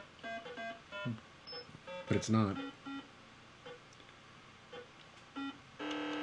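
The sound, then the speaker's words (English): A series of short electronic beeps sounds at an irregular pace, some in quick pairs, ending with a longer sustained tone, while people talk briefly in between. “People who are listening to this as a podcast are just going to hear about some beeps.”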